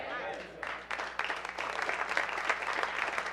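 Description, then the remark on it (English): A church audience breaks into thin, scattered hand claps during a sermon on baptism after a brief voice, the light patter building and holding steady for a few seconds at moderate loudness. “Oh, hand claps thin and wait a minute, Pastor.”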